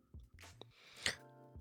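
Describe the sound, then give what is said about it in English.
A quiet sip of beer flavoured with chocolate and strawberries from a glass: a brief airy slurp followed by soft swallowing and small mouth noises, with no talking. “Yeah, let me get another sip of this.”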